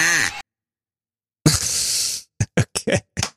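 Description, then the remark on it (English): A duck call is blown: one short reedy honk, a pause, then a longer raspy quack followed by a quick string of five clipped quacks. “A duck call.”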